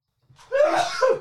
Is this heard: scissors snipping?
no